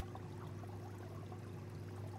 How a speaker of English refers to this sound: Starting with the sink, oh, and then he okay. turns on the sink and lets it start to overflow.